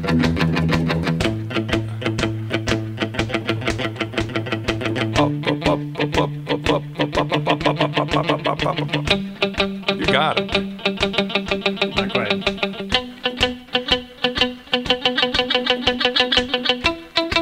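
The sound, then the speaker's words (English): An electric guitar chugs through a steady shuffle rhythm, moving between the low E and A strings, with repeated strummed chords that move to a new chord every few seconds. The playing stays fairly loud, and a voice briefly speaks. “The nice thing about the shuffle is it's got dynamics.”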